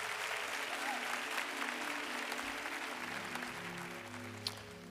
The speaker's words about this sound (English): Honored to have Senator Emmanuel Jones with us today. Give God a hand clap of praise for our senator.